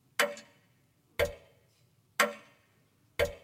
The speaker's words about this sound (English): You ever heard of that the, well, go ahead and play that. That's a grandfather clock.